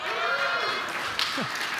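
A church audience applauds and cheers for a man's birthday in a steady, dense wash of clapping, with scattered voices whooping and calling out over it for the whole short stretch.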